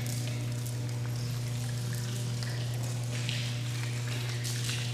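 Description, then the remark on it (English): Wine pouring steadily into a cup, a soft continuous trickle and splash over a low steady hum, fairly quiet, with no one speaking. “Then he poured out the wine and he said, "This represents my blood that will be spilled for you and us to make a new covenant, a new promise where we live in him forever."”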